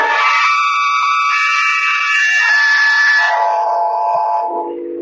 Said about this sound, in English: It did come from this room. As far as I can see, there's no one else in here, just the three of us. If it didn't come from this room, where did it come from? And who screamed? That's what I'd like to know.